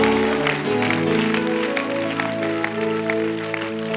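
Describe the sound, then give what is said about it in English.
An audience in Kampala, Uganda claps a hand clap offering to the Lord in a dense, continuous patter of many hands, with sustained keyboard chords droning underneath. No one speaks; the clapping stays fairly loud throughout. “Come on, give the Lord a hand clap offering right there.”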